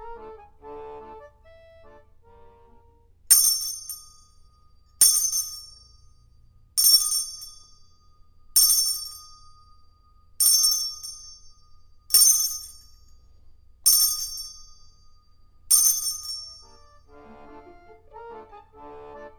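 A bright bell chime rings eight times at a steady, unhurried pace, each strike clear and ringing out before the next, with quieter tonal sounds just before and after.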